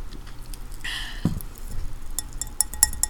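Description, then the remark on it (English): A short fizzy hiss of bubbly raspberry framboise champagne gives way to a few light, high-pitched clinks of the glass near the end, quick and ringing, over a low background hum with no one speaking. “Some raspberry frambois champagne. It doesn't make a lot of sound, but it's bubbly. Hold on. You can tell the glass.”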